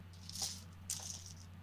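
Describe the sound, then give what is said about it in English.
Dice being taken out clatter softly in two short bursts, a quick rattle and then another about half a second later, over a steady low background hum with no talking. “I just realized I didn't have dice out in case things happened.”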